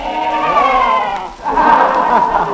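Goats and sheep bleat loudly and close by, two long wavering cries overlapping in quick succession with a brief pause between them.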